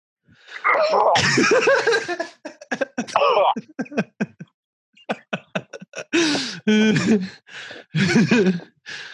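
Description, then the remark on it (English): A long run of loud coughing, with harsh, drawn-out hacks mixed among quick, choppy bursts and brief pauses, sounding forced and exaggerated. No talking. “Now cough a little.”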